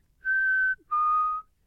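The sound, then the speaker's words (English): A chickadee (shan chi, literally 'mountain sparrow') sings its clear two-note whistled song: a steady, pure higher note followed after a brief pause by a slightly lower, equally sustained note, loud and alone against quiet background. “So the easiest to remember song from them that we'll hear here is the just this two note really pretty song.”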